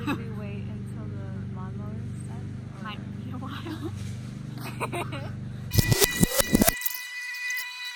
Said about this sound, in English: Don't mind the lawnmower